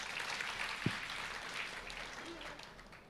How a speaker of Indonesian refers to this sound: Yang mau tepuk tangan berikan.